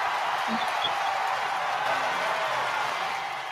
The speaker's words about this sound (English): Got an extra applause. She got like a cologne. I was just about to say, you got the best applause.